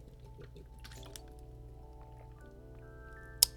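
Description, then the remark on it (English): Someone takes a swig of water, with soft liquid sloshing and gurgling for a few seconds, ending in a brief sharp click. No one speaks. “But anyway, I'm gonna get a swig of water because I'm getting hoarse in the motherfucker.”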